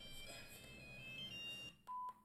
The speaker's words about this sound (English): Bloody ringtones.